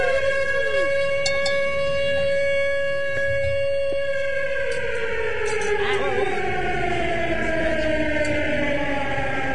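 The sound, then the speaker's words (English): A loud siren sound effect wails continuously, holding a steady tone before its pitch slowly sweeps downward, layered over a dense, noisy background, announcing a Siren Series challenge. “Sounds like a Siren Series challenge.”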